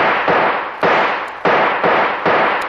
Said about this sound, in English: The only chance is to shoot the lock off that door.